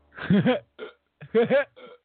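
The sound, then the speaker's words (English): A person vocally imitates hiccups: two loud groups of gulping, voiced hic sounds, each followed by a shorter breathy catch, with brief silence between. “I've gotten hiccups that are quite debilitating, and I can't even talk to people without”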